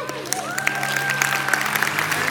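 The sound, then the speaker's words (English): An audience claps steadily at the welcome of a spring break mission trip, a dense patter of many hands at moderate loudness, with a sustained tone and faint crowd murmur underneath. “Some of you are clapping and some of you are like, I guess I should.”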